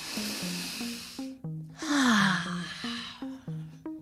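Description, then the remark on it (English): A long, deep breath drawn in through the airway as a breathing exercise, a brief pause, then a slow, audible exhale, clear over a soft, plinking melody in the background. “Take deep breaths. Let's try it.”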